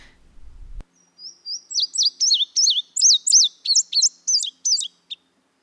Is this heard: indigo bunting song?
yes